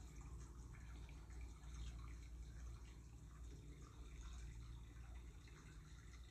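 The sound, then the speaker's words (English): Soft, steady flowing water, like a small brook trickling over stones, with a continuous gentle burble and faint drips throughout, heard quietly and without any voices. “The same way your brook offers constancy, refreshing your energy with its calming movements.”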